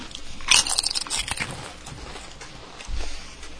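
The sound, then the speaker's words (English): A loud crunchy bite breaks the quiet, followed by a few seconds of softer, crackling chewing with irregular moist crunches. No one speaks. “That's actually better sound than the constant crunching.”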